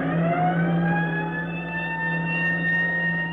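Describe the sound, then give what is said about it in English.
A loud fire siren on the roof of a firehouse wails continuously, its steady droning tone gliding slightly in pitch as it sounds a fire alarm calling volunteer firemen across the district, with no voices present. “As the siren on the roof of the firehouse roars its warning, volunteer firemen all over the district drop whatever they're doing, wherever they are, check with the phone operator for the location of the fire”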